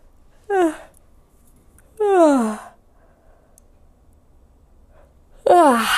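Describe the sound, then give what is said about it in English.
Three deep, voiced yawns, each starting with a breathy inhale and sliding down in pitch, spaced a couple of seconds apart; the second is the longest and the last is cut off at the end. “All right, try this with me now. Yawn.”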